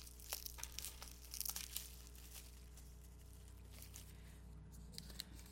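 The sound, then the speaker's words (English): Bubble wrap crinkles and rustles as a bigger, extremely bubble-wrapped package is unwrapped, with irregular bursts of crackling and tearing, then quieter handling over a steady low background hum. “Well, it's a bigger package. It's also extremely bubble wrapped.”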